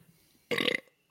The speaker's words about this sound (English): It's the best we're going to get. That burp is probably closer to the pronunciation than I was.